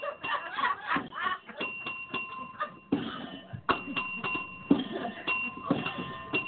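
A bell is struck several times at uneven intervals, each hit leaving a sustained ringing tone that overlaps the next, against a busy, clattering background.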